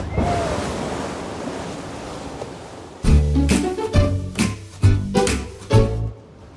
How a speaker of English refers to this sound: A log flume doesn't make that big of a splash.